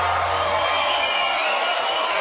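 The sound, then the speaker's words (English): The crowd in a guitar video game cheers in a dense, steady roar of many voices, holding at a constant loudness for about two seconds, slightly muffled and tinny as if coming through speakers. “Hey, listen to that video crowd. They love us.”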